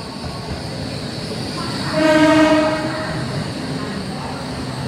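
A train horn sounds once for about a second, ringing over a steady rumble of station noise and rail traffic at the new train station in Luang Prabang, Laos, with faint voices in the background.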